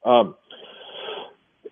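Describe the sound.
A single sneeze: a sharp voiced intake bursting into a breathy, hissing rush of air, followed by a brief faint sound.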